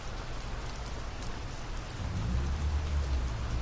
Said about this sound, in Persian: صدای باران در فضا شدیدتر می شود.